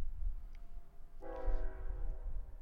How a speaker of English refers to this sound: We've got a train.